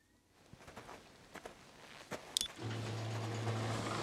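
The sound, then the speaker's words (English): A few footsteps and a sharp click, then the V12 engine of an Aston Martin Vanquish in a driving video game turns over and settles into a steady, deep idle rumble that holds loud to the end. “And being able to drive the fucking Aston Martin Vanquish to V12 engine. And it sounds good.”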